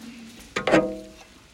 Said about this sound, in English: I love hearing the pages turn. So great.